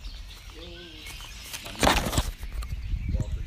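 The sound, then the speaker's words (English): Birds chirp briefly in a short run of calls, followed by a sudden burst of fluttering wings, with a low background rumble throughout. “Who do you think the birds are audible on this?”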